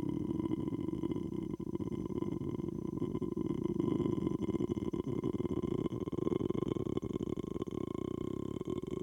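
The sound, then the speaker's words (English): A voice imitates a long croak: one unbroken, low, rattling growl that holds steady in loudness for about nine seconds, with no talking. “Wow, is that a world record for longest croak? That's a great croak.”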